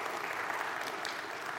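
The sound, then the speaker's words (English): An audience at a morning church service claps for the band steadily, a dense, even patter of many hands with no break, fairly loud and with no voices standing out. “Can you clap for the band again?”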